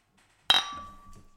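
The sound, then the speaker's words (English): A single soft, subtle clink of glass, with a short bright ring that lingers and fades over about a second. Otherwise quiet. “Let's try and do a more subtle clink.”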